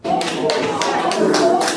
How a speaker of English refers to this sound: Gasps of disbelief and applause as Russian journalist Arkady Babchenko, who Ukrainian police said just yesterday was murdered, shot three times in his apartment, dying in an ambulance.